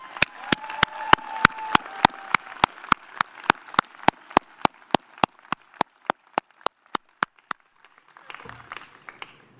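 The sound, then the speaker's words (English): Applause from the Trinity class of 2016 graduates and their parents at commencement, made of sharp, evenly spaced claps in a steady rhythm, about three per second, fading slightly before stopping, followed by a faint murmur of voices. “Before I begin, could you please give yourselves and your moms and dads a rousing round of applause?”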